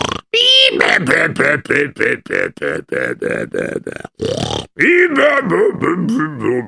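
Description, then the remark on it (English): A voice imitates a prison guard snoring as he sleeps in a chair, with a rapid, rhythmic run of loud, throaty snorts and grunts, briefly pausing before another burst of snores. “What's that I hear? Snoring? Who could be snoring here?”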